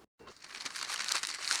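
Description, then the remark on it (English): A sheet of paper is crinkled and handled, a steady run of dry, crackling rustles lasting over a second after a brief silence, with no voices. “Yo, real quick, I got this piece of paper right here.”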